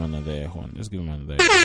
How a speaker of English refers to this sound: Let's give him another air horn.